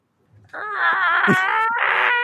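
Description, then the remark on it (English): A person imitates the roar of a Skullosaurus with one loud, drawn-out vocal wail that wavers in pitch, briefly catches, then carries on for about two seconds. “Somebody give us the sound you think a Skullosaurus should sound like right now.”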